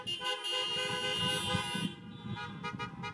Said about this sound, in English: Good morning. Come on, honk back at me.